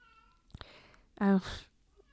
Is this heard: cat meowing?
yes